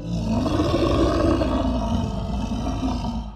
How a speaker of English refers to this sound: But these two were in the park at that time, and as they discussed different ways to rescue cats, their conversation was interrupted by a deep, guttural growl.